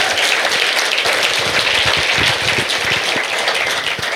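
A crowd at Port City Music Hall applauds a guest steadily for several seconds, a dense, loud wash of many hands clapping with no voices standing out.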